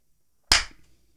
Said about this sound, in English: Recording. Give me a clap.